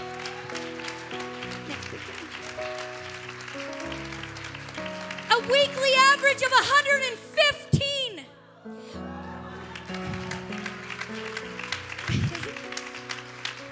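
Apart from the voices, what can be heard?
audience applause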